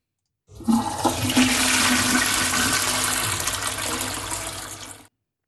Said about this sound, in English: Now, just one more. Can you just now hit the flush of the toilet?